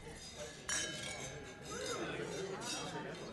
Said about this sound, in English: And then I want you to grab your IPA glass and cheers your partner.